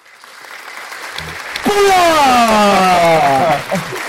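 A loud burst of applause-style clapping sound effect swells up after a quiet start, with a strong wavering, siren-like tone riding over it before both fade slightly at the end.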